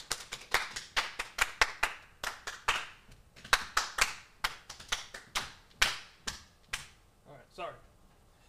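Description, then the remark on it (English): A brief round of applause from a small group: sharp hand claps in a loose, uneven rhythm for several seconds, ending with a short vocal cheer as the clapping fades. “Round of applause!”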